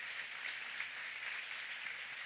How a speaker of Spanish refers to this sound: Me gustaría reconocer a los visitantes. ¡Wow! Muy bien, bienvenidos. Un aplauso al Señor por la vida de ellos, por favor.